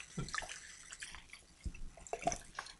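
A chrysanthemum drink being poured into a glass, heard as a few irregular splashes and drips rather than a steady stream, fairly quiet with no talking.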